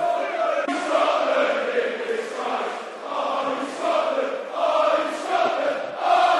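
A large stadium crowd of Millwall football fans sings the chant "You're going to Russia, clap your hands" in unison during a match against Cardiff, the massed voices rising and falling in repeated phrases, loud and continuous, with no single voice standing out.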